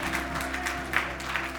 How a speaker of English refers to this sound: Put your hands together and clap this morning.